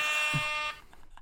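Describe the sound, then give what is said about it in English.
A harsh, steady electronic quiz buzzer, buzzed in during a CSGO quiz question, blares for about three quarters of a second, rich in bright, stacked harmonics, then cuts off abruptly, leaving faint low background noise. “That's all you get because you buzzed.”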